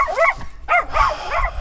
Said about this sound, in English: They always bark at that dog right there.